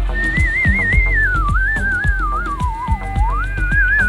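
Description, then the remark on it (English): Someone whistles a wandering melody, the tone clear and loud with a quick warble, sliding down and back up over a steady, rhythmic backing beat. “Oh, I'll whistle a little something for you.”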